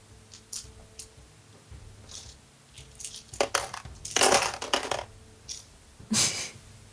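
A handful of dice clatters and rattles across a hard surface in several bursts, the loudest a busy tumbling run midway, followed by another sharp clatter near the end. No one speaks.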